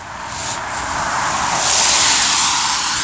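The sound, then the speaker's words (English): A car drives past, its broad tire-and-engine roar swelling steadily, peaking about two-thirds of the way through, then easing slightly. No one speaks. “And hold on, here comes another car.”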